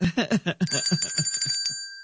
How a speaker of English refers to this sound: It was his idea. To protect my voice. I would yell for him and he'd say, just ring this bell.